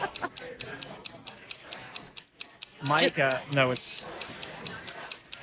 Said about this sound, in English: I'm under duress. I can't do this. Yeah. I don't test well. That ticking is duress. It is awful. It is. It's awful.